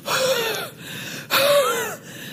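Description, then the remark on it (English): A voice imitates heavy, exhausted gasping: two long, loud, breathy inhalations with a wheezy tonal edge, separated by brief pauses, with no words spoken. “That word weary means gasping.”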